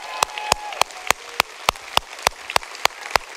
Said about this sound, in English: On the count of three, you ready? One, even online, come on, I hear you clapping.